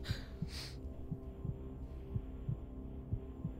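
A heartbeat sound effect: low, muffled lub-dub thumps repeating steadily about four times over a constant low hum, with a brief hissy burst at the very start.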